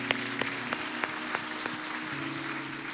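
A church audience gives God a round of applause after a prayer, a dense, steady wash of clapping with sharper claps popping out at a regular beat, while sustained keyboard chords hold underneath.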